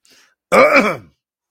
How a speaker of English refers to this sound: And actually, I feel a bit of a cough.